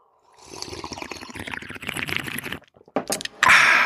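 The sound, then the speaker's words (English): Wet, sucking slurps from someone sipping a drink, a couple of seconds of irregular gurgling sips, a short pause, then a few sharper bursts ending in a loud, hissy rush. “You say actively killing kids and then take a little slurp break.”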